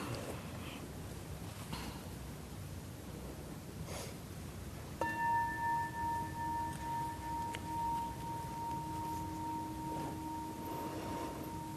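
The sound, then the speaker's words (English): A single bright meditation bell strike, rung to begin a meditation session, rings out over steady background noise, its clear tone and overtones sustaining and slowly fading for several seconds. “All right, so go ahead and get yourself a little comfortable, and I'm going to start by ringing the bell.”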